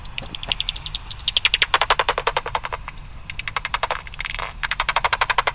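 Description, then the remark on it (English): A common pipistrelle (a 45 pipistrelle) on a bat detector: trains of sharp, dry clicks that repeatedly speed up into dense, raspberry-like feeding buzzes as it homes in on small insects, fairly loud over a low steady hiss, with no voices. “did you hear that little thing that like, sounded like you're blowing a raspberry? That's their feeding buzz.”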